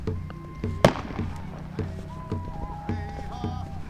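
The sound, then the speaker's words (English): Fireworks pop outdoors on a cold night at the pipeline protest camp at Standing Rock, North Dakota: one sharp, loud crack stands out among a series of softer bursts at irregular intervals, with faint voices singing and cheering in the background. “And you can hear fireworks and singing and cheering.”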